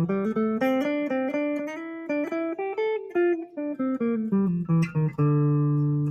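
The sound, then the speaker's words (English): An electric guitar with reverb, played through a Mesa Boogie Lone Star 2x12 speaker cabinet, plays a flowing single-note melody. Notes ring into one another, slide downward in pitch, and end on a long sustained low note. No one speaks. “So reverb on.”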